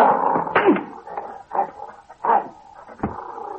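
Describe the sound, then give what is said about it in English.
A male dog growls in a series of rough, snarling bursts, each lasting about half a second with short pauses between them, and no voices alongside. “Heel, boy, heel. Good dog. That's a fine dog.”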